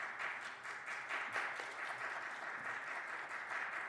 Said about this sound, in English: and I invite you to welcome with your applause